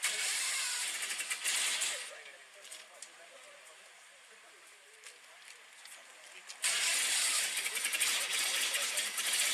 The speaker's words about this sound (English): Oh. It was a big deal to get that car started, bud.